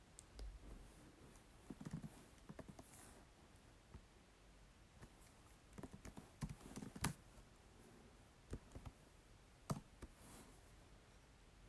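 Typing on a laptop keyboard while replying to a friend: irregular bursts of light key clicks with short pauses between them, fairly quiet, with no voices.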